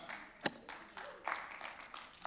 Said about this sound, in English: But don't just three people clap. Everybody clap. If you're going to clap, just everybody clap.